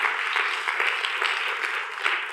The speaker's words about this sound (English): It's, you can clap for that.